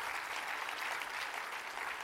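An audience claps together in a dense, steady wash of applause that fills the space evenly, with no individual claps standing out and no voices rising above it.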